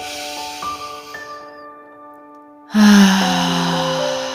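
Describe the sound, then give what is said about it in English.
A deep sigh breath drawn in through the nose, then a loud, airy exhale sighed out during a guided breathing exercise, with sustained, soft musical tones ringing underneath throughout. “Coming into 10 final tri-active breaths, breathing deep, making them full”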